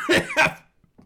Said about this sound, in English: No, I actually coughed. That was just a real cough.